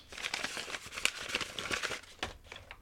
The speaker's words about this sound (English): Click. I clicked the pen. It's ready.